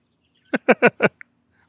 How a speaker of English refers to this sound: I took a sip, a sniffy sniff first.